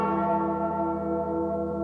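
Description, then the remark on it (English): A large cracked bell, the Liberty Bell, rings out in a station identification for AM 1280 The Patriot, with a rich, sustained tone that hangs steadily in the air for about two seconds, loud, with no voices. “They go together like the Liberty Bell and its crack.”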